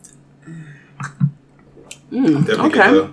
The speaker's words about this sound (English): So let's take the first sip. However you like to sniff, sip.